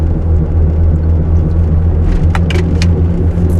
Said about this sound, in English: So let's take a swig. I'm gonna take a swig of this energy drink first. Still drinking the peach bang sweet tea.